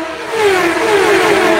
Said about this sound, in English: Put your ear right to the ground. Tell me what you hear. Formula. You heard that? Did you hear that? What was that? Engine.